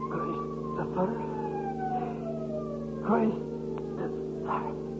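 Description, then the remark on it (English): An ambulance siren on a New York street wails in long, slowly falling tones over a steady low engine drone, with a few brief louder bursts. The ambulance carries a man hit by a taxicab, with an intern and a traffic policeman. “And afterwards, in the ambulance, with the intern and the traffic policeman.”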